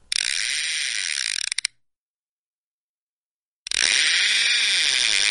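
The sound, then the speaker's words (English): A fishing reel buzzes out in a fast, dense ratcheting whir, falls silent for about two seconds, then clicks back in with a second steady run of rapid mechanical clicking as it is reeled. “cast our reel and see what we pull out of the fishbowl.”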